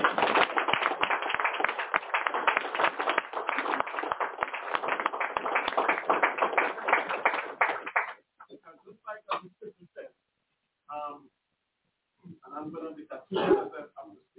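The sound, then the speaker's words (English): A crowd applauds the elders loudly and steadily for about eight seconds, a dense patter of many hands clapping, then the applause stops abruptly and a few people speak quietly. “So give the elders a round of applause.”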